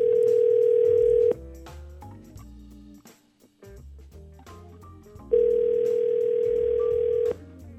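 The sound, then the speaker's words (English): A phone line rings out with two long, steady electronic ringback tones a few seconds apart, loud, with a quieter muddled background filling the gap between rings, as a call is placed to reach a man. “All right, let's try to get him on the phone.”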